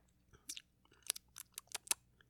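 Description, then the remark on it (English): Wet lip smacks after a sip of wine, a quick irregular run of six or seven soft clicking pops over a couple of seconds, with no talking. “Did you just smack your lips? I smacked those lips.”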